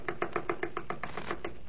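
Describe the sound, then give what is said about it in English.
A quick, even run of about eleven knocks on a house door, knocked because the doorbell does not ring, sharp and moderately loud, with no voices. “Bell don't ring. I'll knock.”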